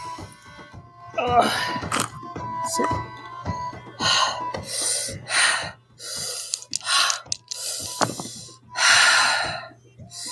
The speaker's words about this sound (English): That's some breathing.